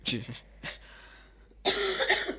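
coughing

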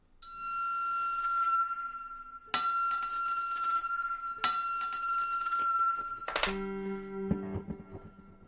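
bell ringing

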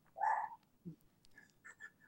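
dog barking

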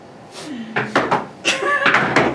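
knocking on wood

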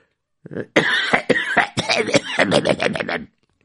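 throat clearing

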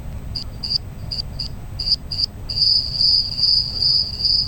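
cricket chirping sound effect

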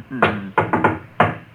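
knocking on a door

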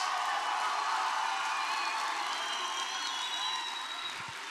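audience clapping hands

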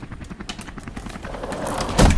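helicopter rotor sound effect

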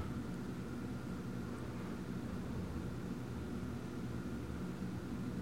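helicopter flying

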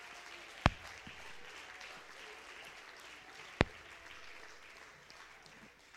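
audience clapping hands

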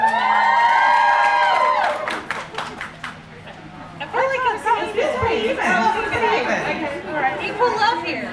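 audience cheering

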